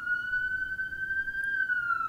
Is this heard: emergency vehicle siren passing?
yes